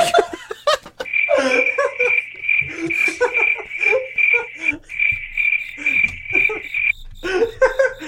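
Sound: cricket chirping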